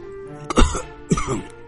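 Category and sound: human body sound, coughing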